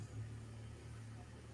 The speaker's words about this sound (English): Cars make lots of noise in here when they start up. Is he pulling out?